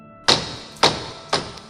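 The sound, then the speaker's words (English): Three sharp, hollow wooden knocks of two branches being banged together, spaced about half a second apart, each a bright crack with a brief ringing tail, fairly loud with no voices. “And June is going to get two branches and start banging them together and call out to James.”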